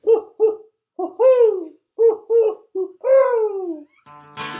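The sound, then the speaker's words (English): An owl hoots in a rhythmic series of loud calls, quick paired hoots followed by longer drawn-out ones that slide downward, ending with a brief rough burst. “Look out. There's a boiled owl flying around.”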